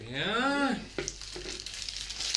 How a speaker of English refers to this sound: Yeah. Some paper crinkling.